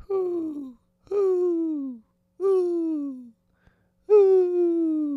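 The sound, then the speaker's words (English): Four soft, drawn-out owl hoots, each sliding gently downward in pitch, spaced by short pauses; the hoots sound like a human voice imitating an owl rather than a real bird. “And I know some of you bitch freaks have been complaining about the how loud the owl sound is.”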